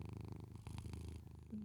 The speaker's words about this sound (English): Bullet is, I think he's awake and he's purring. So let's contribute, Bullet. He's contributing.